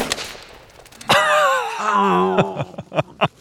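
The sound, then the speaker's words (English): A single sharp shot from a scoped rifle aimed at a target cracks out, immediately followed by a loud, wavering cry from a voice and a few shorter sharp sounds near the end. “And when you're ready to shoot, start breathing out real slowly. Squeeze the trigger and...”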